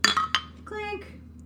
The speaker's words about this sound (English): Oh, wait, we didn't even clink. Mm. Clink.